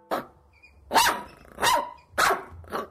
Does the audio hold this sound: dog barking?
yes